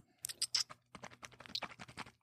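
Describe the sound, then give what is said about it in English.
Crunchy, rhythmic chewing: a quick series of crisp, clicky bursts, some louder and grouped in pairs, with no one speaking. “That's just me chewing it up.”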